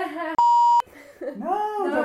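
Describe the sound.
A loud, steady electronic censor bleep lasts about half a second, cutting sharply into a person's speech, with talking resuming right after.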